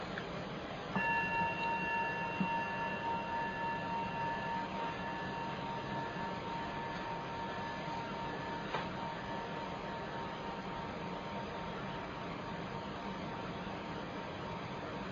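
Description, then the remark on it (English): A meditation bell is struck once to gather a group for a loving-kindness meditation, its bright, layered tones ringing out and slowly fading over several seconds above a steady background hiss, with no talking. “And I'll just ring the bell once, just as a sound to collect us.”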